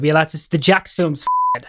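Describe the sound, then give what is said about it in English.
A man talks, then a single steady, high-pitched censor bleep replaces a word for about a quarter second before his speech resumes briefly. “We should beep it out.”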